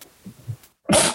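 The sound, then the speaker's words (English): A single sharp, loud sneeze bursts out after a brief moment of quiet, preceded by faint low murmuring. “Bless you.”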